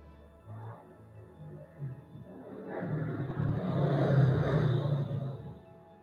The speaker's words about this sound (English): That'll be the sound effect for the helicopter.